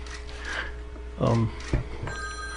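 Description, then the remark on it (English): A telephone starts ringing near the end, a steady electronic tone sounding at moderate volume over murmuring voices and a couple of brief thumps. “Would you answer that? Give me the phone, I'll talk.”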